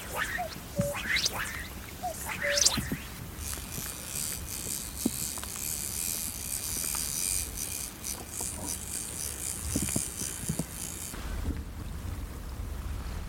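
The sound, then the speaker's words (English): A cuckoo calls twice in the opening seconds, its soft two-note hoots echoing around a loch, followed by a long stretch of steady wind and faint lapping ambience. “just the sound of the cuckoo echoing around this lock.”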